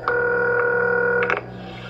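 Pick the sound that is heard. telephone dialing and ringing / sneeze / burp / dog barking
telephone dialing and ringing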